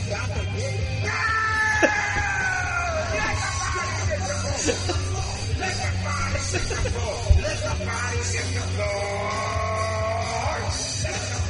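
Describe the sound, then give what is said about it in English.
A man at a party lets out long, strained screams in two main stretches, loud, over a steady low hum and a busy, noisy background. “I think his screams are my favorite part.”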